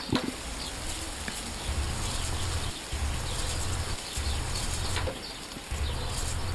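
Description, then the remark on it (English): A garden sprinkler hisses steadily in a field recording played from a sampler as looping sequences and tracks, its spray coming in repeating pulses about once a second, with faint outdoor chatter and ticking textures mixed in. “There's somebody playing with their sprinkler.”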